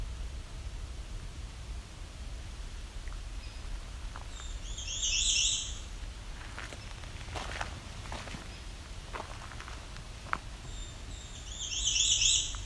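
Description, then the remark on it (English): A hairy woodpecker gives a series of sharp, piercing single calls at an irregular pace over a steady hiss of outdoor background noise, with a brief high warbling song twice from an American Redstart. “There's a hairy woodpecker coming up. That piercing call.”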